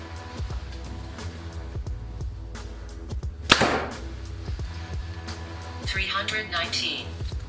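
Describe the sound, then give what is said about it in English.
A Hoyt Ventum 30 compound bow (29-inch draw, 70 pounds, 80% let-off) fires a single 350-grain arrow midway through, a sharp, loud snap and thwack that fades quickly, set against a steady low background hum. “All right, guys, now the Hoyt Ventum 30 at 29 inches of draw, 70 pounds with 80% let off. First arrow, 350 grains.”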